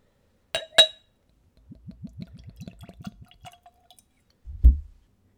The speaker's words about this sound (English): I taste spirits neat, and I use a clean Glencairn. It's a standard nosing glass. It's designed for whiskey originally, but it's perfect for all spirits. And so I drink the spirit at room temperature, no dilution, no ice. So let's go for a pour.